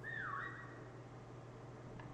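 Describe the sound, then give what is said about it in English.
A person whistles a short, bright tone that bends downward then levels off, fading after about a second over a steady low hum, with no talking. “My whistling's so loud.”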